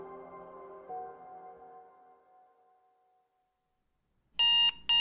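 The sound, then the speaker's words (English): After a soft tone fades into silence, an alarm clock on a nightstand beside a bed suddenly rings out loud and shrill, a harsh electronic beeping in two quick bursts that starts near the very end. “The distinct, annoying shriek of an alarm clock sounded to Wade's right.”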